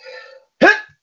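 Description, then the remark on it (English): A single loud sneeze: a short voiced intake of breath, a brief pause, then a sharp explosive burst that quickly fades. “Bless you.”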